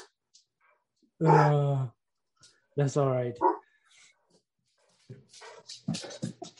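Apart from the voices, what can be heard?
dogs barking and whimpering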